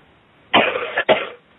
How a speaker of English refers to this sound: Just take a deep cough and cough them out. Let me hear you.